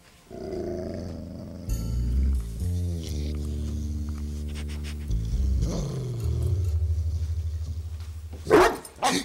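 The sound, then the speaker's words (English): A dog named Poe snarls and growls low and steadily for several seconds, fairly loud, then lets out a sudden sharp bark near the end. No one speaks. “Easy. Good dog.”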